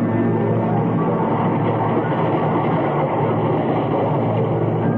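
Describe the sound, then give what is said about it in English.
A train passes through a railway station, rumbling steadily in a dense, unbroken roar of wheels and machinery that holds the same loudness throughout, with no voices. “This is the story of Alec Harvey and Laura Jessen and a life lived in the commuter section of a railway station.”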